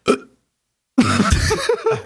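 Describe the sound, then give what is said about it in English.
A brief throaty hiccup-like sound, a pause, then a long, loud, croaking burp, about a second long and rough-textured, with no speech around it. “You know when you burp up like meat, just how bad that is, all fucking day.”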